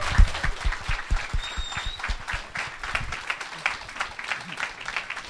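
An audience applauds steadily for several seconds, a dense, even patter of many hands clapping at a fairly loud level with no one speaking over it.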